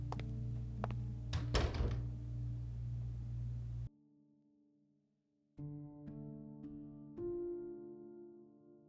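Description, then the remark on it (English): A door thuds shut with a short, solid knock over a steady low hum, then the room falls nearly silent before a soft tonal background returns. No one speaks. “Close the door, will you?”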